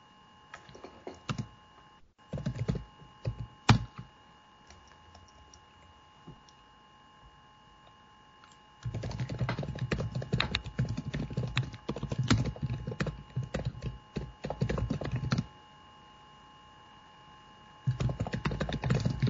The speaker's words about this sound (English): I was typing as well.